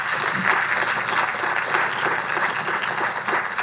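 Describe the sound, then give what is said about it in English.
A crowd claps steadily and loudly for the speaker's wife as she is introduced, a dense, continuous wash of many hands that holds at an even level for several seconds without any voices over it. “Give a round of applause for my wife,”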